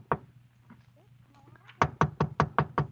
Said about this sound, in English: I got to apartment 1B. I knocked.